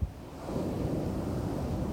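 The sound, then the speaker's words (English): Ocean waves wash in a steady, low rumbling roar, with a soft swell early on and a faint breezy hiss over the surf. No voices are heard. “Use this opportunity to embrace that ocean air.”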